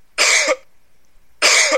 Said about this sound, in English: A lot of people cringe when they hear that sound these days. A person coughing.